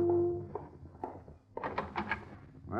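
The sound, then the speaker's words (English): A quick run of knocks by a dark-haired girl on the door of a room in a small hotel, several sharp wooden raps in an uneven rhythm, following a few softer thuds against a low background hum. “There was only one small hotel, and I checked into it under the curious glance of a dark-haired girl who knocked on the door a few minutes after I'd gotten to my room.”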